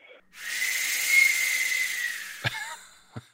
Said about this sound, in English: And believe it or not, they even had a sound for the air brake on the train.